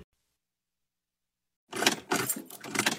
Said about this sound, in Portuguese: O carro não tá ligando, Juninho? Deve ser problema na bateria isso daí.